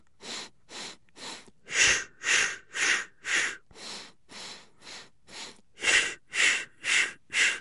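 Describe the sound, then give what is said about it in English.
Rhythmic breathing exercise: sets of four quick, sharp sniffing inhales through the nose alternate with four short puffed exhales out the mouth, repeated in a steady pulse. Fairly loud, with no talking. “And the ratio of breath is you're inhaling 4 breaths in a row. So it's, and then you're exhaling 4 in a row.”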